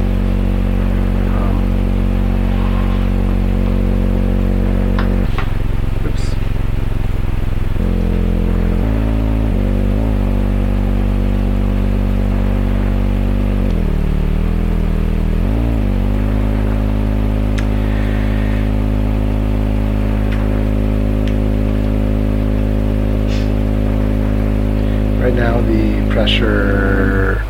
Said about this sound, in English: So when I push the keyboard, the ribbon controller, it opens up the filter.